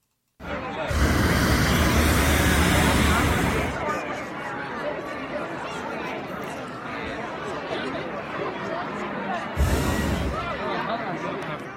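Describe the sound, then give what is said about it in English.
A loud, roaring whoosh from hot air balloon burners in Telluride at the end of the day lasts about three seconds, then a crowd murmurs and chatters until a second, shorter burner blast cuts in near the end. “That was them just putting little puffs of hot air into the balloon with that big whoosh sound.”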